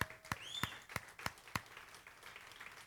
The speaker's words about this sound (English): Go ahead, veterans. We're going to all stay seated and give them a round of applause, guys.